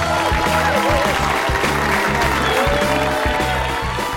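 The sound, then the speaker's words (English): An audience applauds itself steadily for about four seconds as a performer says good night at the end of his set, a dense wash of clapping, with a loud, thumping music track pulsing in a regular beat underneath the whole time. “Give it up for yourselves.”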